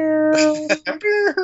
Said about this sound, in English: That's the air horn that ends the Anaheim.